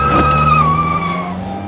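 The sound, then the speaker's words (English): A big, long, shiny, rounded silver Mercedes cruises past on a main street with a steady, low engine hum and a thin, high tire whine that slowly drifts down in pitch, fairly loud throughout and easing off toward the end. “Finally, after all these years, I can cruise up and down the main street with the windows down and the sound system booming.”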